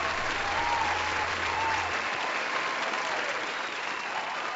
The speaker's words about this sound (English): Cue the applause.